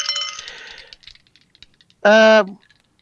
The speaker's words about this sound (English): And now roll your 2 dice.